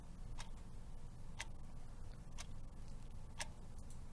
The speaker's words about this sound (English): Oh, wait. I have sound effects, too. I have a ticking clock sound effect that only they can hear.